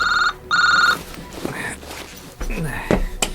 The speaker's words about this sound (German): verspürte er beim plötzlichen Klingeln seines Handys einen deutlich erhöhten Herzschlag.